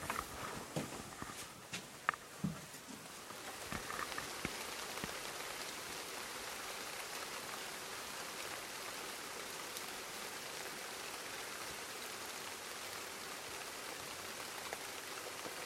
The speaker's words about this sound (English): Can you hear the rain? Let's move over to the window.